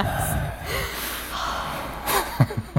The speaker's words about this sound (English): Filling it with just breathing, existing. Just breathing heavy on mic. Yes.